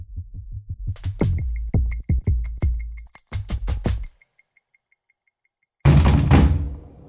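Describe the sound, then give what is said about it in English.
A fist pounds heavily on a door in rapid, uneven bursts of loud, booming thuds for several seconds, then stops; after a short silence a loud, harsh crashing burst follows. FBI agents are pounding on a Chinese scientist's door at night to arrest him. “I was thinking, who would pound people's door like that?”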